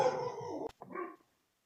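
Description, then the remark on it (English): A dog barks twice: a long, strained bark followed by a shorter one after a brief sharp break, then silence. No talking is heard. “Sorry, my dog's barking.”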